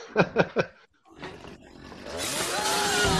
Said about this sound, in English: I can't hear somebody say "Hey" to me when they're standing next to me and I'm using a fucking chainsaw.